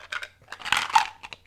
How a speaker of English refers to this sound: My cheers is just sort of like ice cubes rattling in my cup. But they sound so refreshing, though.